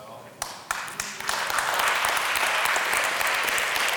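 A handful of scattered, separate claps quickly swell into steady audience applause that keeps up at an even, moderate level through to the end.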